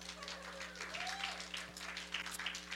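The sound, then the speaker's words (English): An audience claps steadily, a dense wash of overlapping hand claps with no pauses, moderately loud and sustained for the full few seconds, with a low steady hum underneath. “Let's just clap for Chris.”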